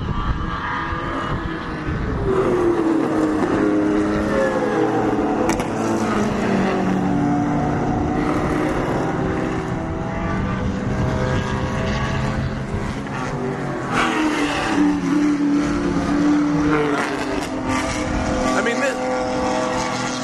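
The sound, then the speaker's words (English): Roaring engines of race cars of different classes sweep past at close range on the Mossport race track, their pitch rising and falling as they pass, with a loud, continuous mechanical drone and background voices mixed in. “This is closer than I've ever been to the cars at Mossport.”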